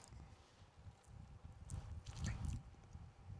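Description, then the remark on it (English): Quiet mouth sounds of someone taking sips of a triple IPA beer: soft wet slurps and swallows in an uneven rhythm, with faint clicks and no talking. “Let's take a sip of the beer first. So see how this triple IPA hits at the end of the night.”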